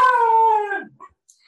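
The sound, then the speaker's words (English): A pet dog gives a single drawn-out howl, a steady tonal wail that sags slightly in pitch before breaking off after under a second, followed by faint scraps of noise. No one speaks. “Should I pause it and I'll get my dog?”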